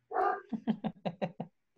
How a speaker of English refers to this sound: My dog is going crazy at the moment.